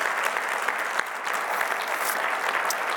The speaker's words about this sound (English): Would you give the Lord a clap of praise this morning?